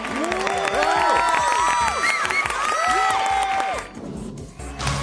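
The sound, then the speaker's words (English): A virtual stadium crowd cheer from the Remote Cheer remote support system, powered by SoundUD, whose volume rises with the number of people tapping buttons: many voices whooping and yelling together in rising and falling shouts for about four seconds, then the roar drops away to a softer murmur. “Cheers can also be customized based on the competition or event.”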